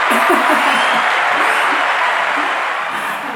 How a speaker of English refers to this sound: And I want to give you applause because I feel like throughout my years of living in Richmond, of course, you know, shout out to growth that we both have mm-hmm. made.